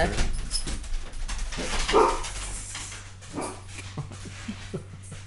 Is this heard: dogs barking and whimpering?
yes